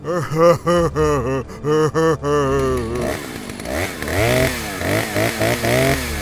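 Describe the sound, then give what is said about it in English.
A chainsaw engine sputters in choppy, uneven bursts as it runs out of fuel, then rattles on with rough, noisy revs that rise and fall before stalling; loud, with no talking. It is Leatherface's chainsaw in a Texas Chainsaw Massacre parody. “But his blood-spattered chainsaw has run out of fuel.”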